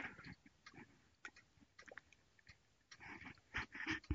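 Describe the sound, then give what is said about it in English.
Wet mouth sounds of someone sipping hot, very strong coffee, a few short slurps and swallows with small clinks and rustles, getting louder toward the end, with no talking. “Let me get a sip of coffee, if you don't mind.”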